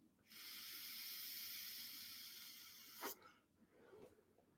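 A steady, airy hiss of someone pulling hard through a vape with the airflow fully open, a loose restricted-direct-lung draw lasting almost three seconds, followed by a short breathy exhale and soft rustling.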